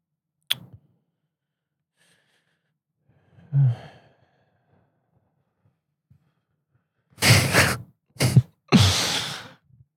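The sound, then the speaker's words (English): Heavy breathing: a soft breath, then a quiet pause, then three loud, raspy huffs in quick succession near the end. No talking. “Heavy breathing.”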